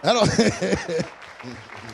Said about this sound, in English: I don't care what you think. I hear them little stale claps.